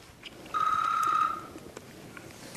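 A single short electronic phone ring, a steady mid-pitched tone lasting under a second, sounds clearly over a quiet background with no one speaking; a phone call late at night in Senator Flake's office, from Lindsey Graham.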